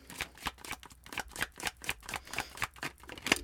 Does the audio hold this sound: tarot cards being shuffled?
yes